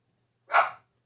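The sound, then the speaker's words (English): A single short dog bark, fairly clear, sounding alone against a quiet background with no one talking. “Stupid dogs.”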